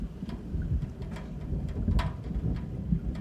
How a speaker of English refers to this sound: Then it started to rain again, returning in a violent curtain of water, and the cries were drowned out in the thunderous downpour.